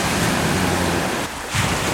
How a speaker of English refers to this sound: Just the sound of the sea, rather soothing.